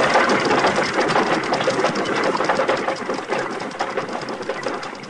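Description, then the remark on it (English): A stagecoach pulls away in a loud, continuous rattle and clatter of wheels and hooves, a dense rapid rhythm that holds steady and eases only slightly toward the end, with no voices. “You didn't have to send the stage off.”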